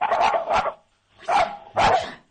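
A dog named Toby barks in short, loud bursts, about four sharp barks in two quick pairs separated by a brief pause, with no talking over them.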